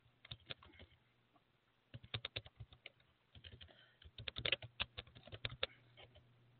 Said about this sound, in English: I'm typing this up, so y'all give me a moment. Y'all bear with me for a minute.